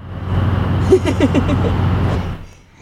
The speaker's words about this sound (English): That's the sound of a gas station.